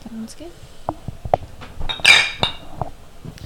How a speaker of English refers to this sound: But guys, let's go ahead and just give a cheers to the episode real quick.